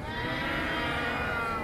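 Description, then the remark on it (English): An audience imitates hungry Norwegian cows, their overlapping drawn-out moos merging into one loud, sustained chorus for a couple of seconds. “So, I need everyone from here over to be my hungry, hungry Norwegian cows. Let me hear your best.”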